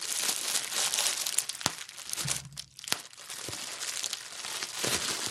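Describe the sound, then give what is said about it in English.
Someone rustles and pops bubble wrap: continuous crinkling and rustling, broken by a handful of sharp, isolated pops at irregular moments, with no voices. “find it relaxing to pop bubble wrap, the actual action of it, okay, that I'm about to do now.”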